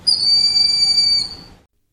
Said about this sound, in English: broad-winged hawk call courtesy of Wild Green Mountain.